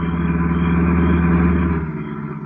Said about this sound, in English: Hold it, there's a car coming.